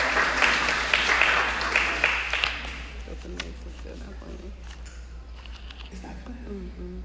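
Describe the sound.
A crowd applauds, dense hand clapping that is loud at first and fades out after about three seconds, with scattered claps and murmuring voices trailing afterward.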